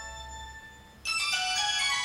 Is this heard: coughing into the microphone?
no